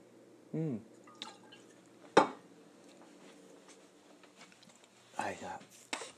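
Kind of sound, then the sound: food or drink, sipping coffee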